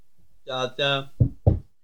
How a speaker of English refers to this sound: What's that knock? It might be a secret knock. Try it.